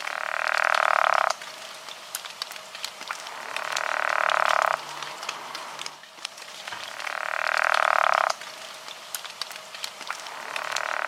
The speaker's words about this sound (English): The elusive pickerel frog.